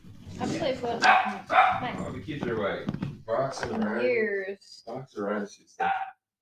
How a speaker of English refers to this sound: She's been very barky loud and very territorial. Very loud. Driving me insane.